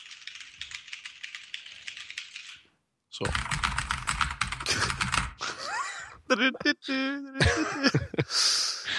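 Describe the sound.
Rapid, dense clattering of keystrokes on gaming keyboards at a friend's home, fairly loud, in two bursts with a brief pause between, followed by people talking.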